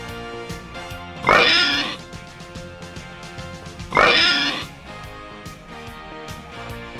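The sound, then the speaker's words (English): Three loud, squealing pig oink sound effects from an oink machine burst out a few seconds apart over a steady humming, tonal background, with another just starting as it ends. “There's three. Hand is off the oink machine. Three oinks, huh?”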